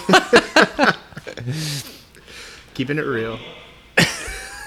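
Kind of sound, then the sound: human body sound, person blowing their nose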